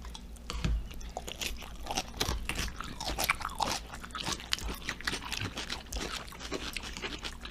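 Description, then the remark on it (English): Steady crunching of someone chewing crisp, not very creamy coleslaw, a rapid series of wet, crackly bites repeating throughout with no talking. “It's got that nice crunch to it.”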